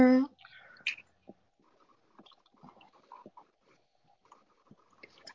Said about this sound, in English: Baby, the way she chewing that gum,